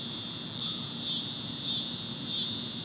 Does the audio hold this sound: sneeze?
no